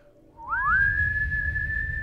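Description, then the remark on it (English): A person whistles one long, steady note, imitating Gandalf's long whistle; it rises quickly at the start and then holds level for about a second and a half, clear, with a low rumble underneath. “He lifted up his head and gave out this long this long whistle.”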